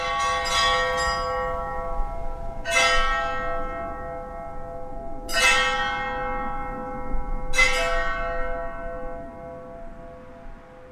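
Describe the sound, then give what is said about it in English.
Church bells made from welding tanks with their bottoms cut off, hung up at a small church and struck with ball-peen hammers, clang in a slow, uneven series, a quick pair of hits followed by three single strikes, each ringing on with a bright metallic hum. “So we cut the bottom off the welding tanks, hung them up, and then we beat them with ball-peen hammers.”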